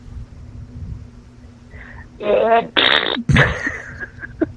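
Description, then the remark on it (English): A few loud, buzzy raspberry bursts blown with the lips, imitating farts, come in quick succession after a quiet stretch, with some faint rumbling in the background. “Can you do that and fart at the same time?”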